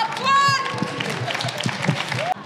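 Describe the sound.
A crowd applauds steadily for a couple of seconds, the dense clapping mixed with a high whoop or cheer near the start and scattered voices underneath.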